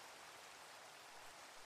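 nature, rain falling

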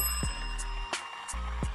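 signal or alarm, small bell ringing

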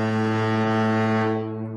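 signal or alarm, foghorn blast

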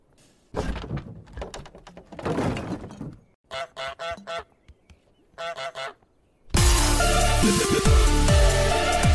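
animal, goose honking

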